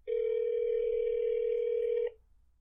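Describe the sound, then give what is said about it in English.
A phone line ringing out during a call to a bar in Funkley, Minnesota: one steady, buzzy ringback tone lasting about two seconds, then it cuts off into quiet line hiss. No one speaks. “We're calling the bar.”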